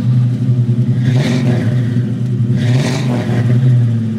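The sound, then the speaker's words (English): A voice imitates a revving car engine, a low, steady buzzing drone that swells in two breathy surges, loud, with no other sounds around it. “I tried to sound like I'm revving my voice up, but I don't know if that sounded as successful as what I thought it sounded like in my mind.”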